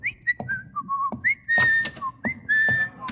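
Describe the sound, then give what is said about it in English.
Miss Brooks whistles a bright, lilting tune in the hall, clear pure notes gliding up and down in short phrases, with a few soft thumps and shuffles underneath. “Whistling in the hall is just the first of a long and distinguished line of violations”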